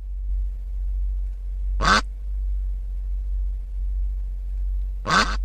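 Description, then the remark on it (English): A duck gives two short, nasal quacks about three seconds apart, each loud and clear, over a steady low hum with no voices: first an ordinary quack, then the quack with one echo added by an electronics effects box. “Now, listen again to the ordinary quack, and then the quack with one echo.”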